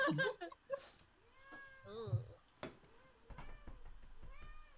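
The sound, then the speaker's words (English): A female cat, being very ornery, meows repeatedly in drawn-out, wavering cries, fairly loud, with some background noise and movement in between. “If you can't hear her, my cat is being very ornery.”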